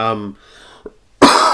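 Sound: cough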